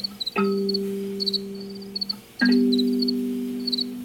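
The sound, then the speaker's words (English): Crickets chirp in short, repeated high-pitched bursts throughout, while a deep resonant tone swells twice underneath, each time ringing on and slowly fading. No one speaks. “The cricket songs are like the real point of entry into all of that.”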